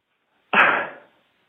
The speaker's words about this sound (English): And then she hangs up. Now, we heard the hang up there, right? That's from a landline phone.